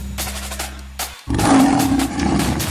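A deep, low hum gives way to a loud lion roar that swells suddenly and holds for over a second with a raspy, growling rumble. No one speaks.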